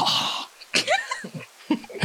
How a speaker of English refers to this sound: I'm going to sniff the bag.